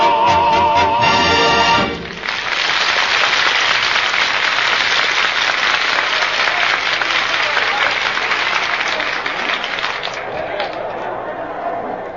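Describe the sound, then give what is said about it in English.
A large ballpark crowd cheers and claps before the game starts, a loud, steady roar for about ten seconds, following a brief burst of music at the start and easing slightly toward the end. “look at that crowd. Look at that bloodthirsty mob waiting for us to start.”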